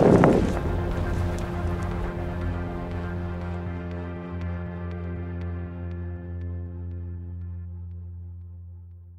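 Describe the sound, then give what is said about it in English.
Ammunition cooking off inside burning homes, captured on video by Martin Espinoza of the Press Democrat: a loud burst at the start, then scattered sharp pops at irregular intervals over a steady, low, humming roar that slowly fades. No one speaks. “And in the background of all this chaos, there's ammunition cooking off inside homes as they burn, captured on video by Martin Espinoza of the Press Democrat.”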